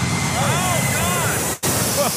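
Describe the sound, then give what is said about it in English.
A loud, steady roar of an aircraft passing low overhead, with whining tones that sweep up and down as it goes by, then cuts off abruptly for a moment. “That was close to our heads. Was that a flyby?”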